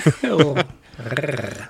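A human voice imitates a low, rumbling growl in two drawn-out bursts with a brief pause between, loud.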